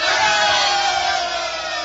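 A large crowd at an election in the town of Eatanswill, Slumkey versus Fizkin, roars and cheers for Slumkey in a loud, steady wall of overlapping shouts and whoops that holds for the whole two seconds, fading only slightly toward the end.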